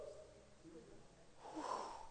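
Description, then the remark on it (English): A person mimics snoring with a single breathy, rasping snort that swells toward the end, fairly quiet, with no words spoken. “He was snoring.”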